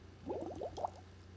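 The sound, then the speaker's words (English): A short burst of gurgling bubbles as a woman blows air into her drink to mix it, like through a straw, lasting under a second and fairly quiet, over a faint low hum. “She's either blowing bubbles in a drink or she's smoking her bong.”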